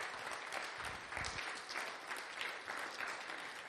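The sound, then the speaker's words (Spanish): An audience applauds God together at a Christmas service, a dense, steady wash of clapping that fills the whole stretch at a fairly strong level, with a faint murmur of voices mixed in. “Démosle un fuerte aplauso a nuestro Dios.”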